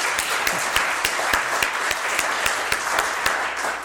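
A room full of people applauds, a dense, steady wash of many hands clapping at once with sharp individual claps popping out, sustained for several seconds without any talking.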